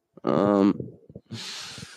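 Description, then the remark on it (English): A man snores: a loud, buzzing, rattly snore, a brief pause with a few soft mouth sounds, then a long, airy, hissing breath out. “I mean, I would ask my co-host, but he's literally snoring.”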